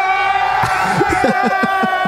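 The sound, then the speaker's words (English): A crowd cheers a man on, shouting loudly and continuously, with overlapping whoops and yells rising over a steady roar of voices. “He had a bunch of people cheering him on.”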